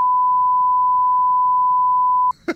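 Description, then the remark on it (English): A steady, loud censorship bleep holds a single pure tone for over two seconds, then cuts off abruptly into a brief burst of voice. “And it's a long beep.”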